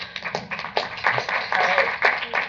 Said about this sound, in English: He also helped save Fenway Park, so we should give him all really a big round of applause for that.